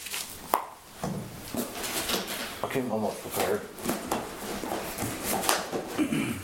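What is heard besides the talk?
rustling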